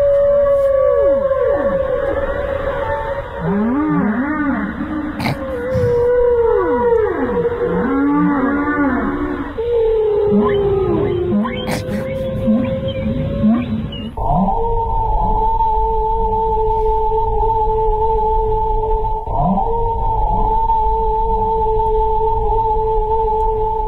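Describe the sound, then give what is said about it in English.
Continuous whale-like song: sweeping moans and wavering tones slide up and down, then settle into long steady drones, most likely a voice imitating a male whale singing. “male whales across the eastern coast of Australia have apparently given up singing.”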